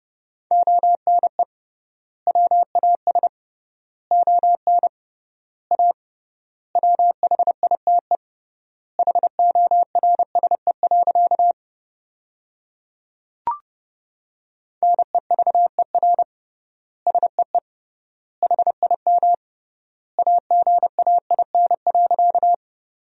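Fast Morse code at 30 wpm with 3x word spacing, sending sentences made from the top 300 words: a steady mid-pitched tone keyed in rapid dots and dashes, grouped into words with long pauses between them, plus a single click midway. No voices.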